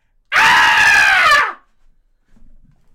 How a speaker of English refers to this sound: I just screamed.